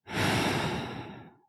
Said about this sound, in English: You're breathing it in. And you breathe out.